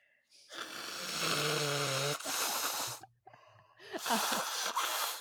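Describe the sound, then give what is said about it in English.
A loud truck rumbles past outside as it leaves, with a steady low engine drone and bursts of broad, hissing noise that surge, drop out briefly, then return before fading. “Pardon me, the loud truck is leaving.”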